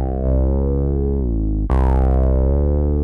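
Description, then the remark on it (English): A sustained, buzzy synthesizer lead tone from the ESM synth in Logic Studio plays alone at a steady, fairly loud level, shifting pitch downward in steps before a sharp, brighter re-attack leaps it higher. “In Logic Studio, we can start with an ESM sound like this.”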